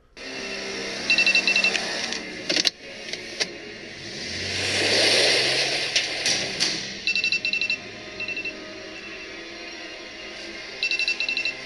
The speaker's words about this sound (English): So I guess their phones are going off, and this is the final scene of Leave the World Behind.